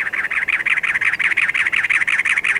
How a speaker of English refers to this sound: Now, a cactus wren announces itself atop a barrel cactus.